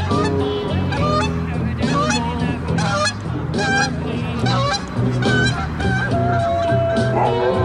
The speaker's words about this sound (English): and the Canada geese also got involved as they flew over just a few feet ahead.